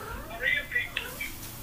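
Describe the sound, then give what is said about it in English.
A few short, high-pitched cat meows, soft, come in quick succession with brief pauses between them over a quiet background. “Cat, get out, cat, go.”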